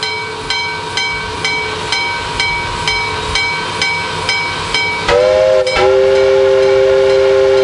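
A train chugs in a steady, even rhythm of repeated beats, then a loud, sustained steam whistle blows twice, the second blast held longer. No one speaks.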